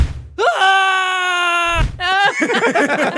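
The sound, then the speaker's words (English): People on an old Ferris wheel scream as it reaches the top: a loud, drawn-out scream holds steady for over a second, followed by a shorter shriek, then breaks into excited, overlapping voices and laughter-like chatter, all intense. “Yeah, it's a clip on you guys on like an old Ferris wheel, and as soon as it starts to get to the top, everyone starts screaming.”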